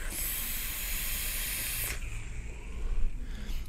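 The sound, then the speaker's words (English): A vape atomizer, a Dot Mod Petri Atomizer version 1.5 on a Joe Lit 44 mod with DNA 200 set to 92 watts, fires with a steady, bright hiss that holds for about two seconds and then cuts off abruptly, leaving only a low background rumble with no talking. “Dot Mod Petri Atomizer version 1.5. Joe Lit 44 mod DNA 200 set to 92 watts.”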